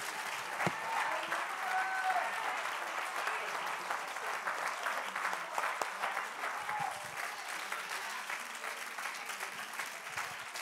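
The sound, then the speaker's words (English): A church audience claps their hands unto the Lord for about 30 seconds in steady, sustained applause, a dense crackling wash of many hands with a few faint cheers or voices rising briefly through it. “Oh, won't we just take 30 seconds, clap our hands unto the Lord, let's magnify him together.”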